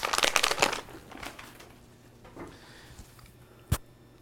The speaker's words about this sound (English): you make the crinkling noise with the food thing and your dog does this crap.